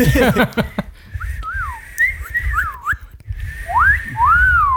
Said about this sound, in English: Are we all bad at whistling? Try it again. Wee woo!